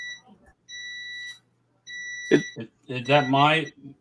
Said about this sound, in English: Am I hearing a ringing? Or that is my. That's our microwave going off.